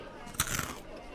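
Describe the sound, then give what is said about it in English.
A sharp crunch of someone biting into crunchy breaded food: one loud crackling burst quickly followed by a softer second crunch, then quiet. “It's so crunchy.”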